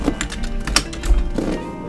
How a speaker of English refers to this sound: He's really typing over there. I know, he's typing a lot.